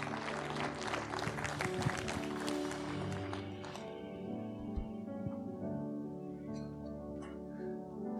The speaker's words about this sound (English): Yeah, give him a big clap.